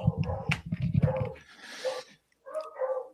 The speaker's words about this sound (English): Hang on. My dogs are assholes.